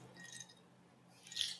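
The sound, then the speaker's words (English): A quiet sip of Whispering Angel rosé wine: a soft, wet slurping hiss early on, then a brief, slightly louder airy sip near the end, with no talking. “Taking a sip of her whispering angel. I can hear it.”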